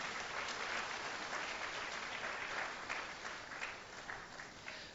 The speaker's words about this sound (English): Our teachers have done a great job, okay, with our children. I think they deserve a wonderful clap.